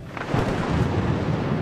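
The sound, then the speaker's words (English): A loud, continuous rumble of thunder rolls through a stormy soundscape, deep and heavy throughout, with a broad hiss like rain beneath it and no voices. “But the next afternoon, while going after cows in a thunderstorm, Billy was struck by lightning, and Cull was among the first to find him.”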